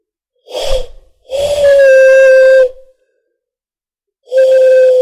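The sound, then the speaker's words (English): Hollow, breathy whistling blown through cupped hands acting as a Helmholtz resonator: a short puff, then a long steady mid-pitched hoot, a pause, and another sustained hoot. No one speaks. “You get this kind of whistle sound sort of thing.”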